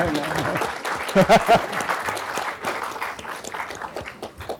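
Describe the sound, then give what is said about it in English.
An audience breaks into steady applause after a speaker finishes a talk, a dense patter of many hands clapping at once, with a few louder claps standing out near the start and voices murmuring underneath. “Do you clap? Yes.”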